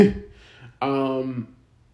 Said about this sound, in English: But, as I yawn,